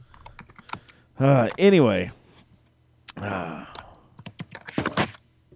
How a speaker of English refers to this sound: He's typing something. I just don't know what the fuck he's typing. He's all a keyboard warrior.